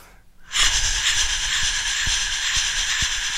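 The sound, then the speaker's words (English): A voice imitates a steam train: after a brief pause, a loud, steady breathy hiss begins, punctuated by regular low chuffing thumps about every half second. “Well, since we're on the subject of making noises, I can do an impression of a steam train.”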